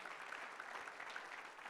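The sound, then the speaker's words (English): A church audience claps together as a clap offering to the Lord, in a steady, dense wash of applause, many hands overlapping with no clear rhythm, holding an even level throughout without any voices standing out. “Let's give the Lord another clap offering today, if you would, please.”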